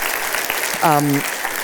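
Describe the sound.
A church audience claps in a steady, dense patter to thank last week's speaker, with a short voiced whoop or cheer rising over the applause about halfway through.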